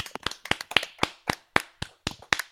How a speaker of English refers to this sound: So round of applause for Would You Rather, you moths.